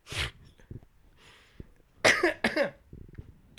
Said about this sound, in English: Sorry, I'm coughing.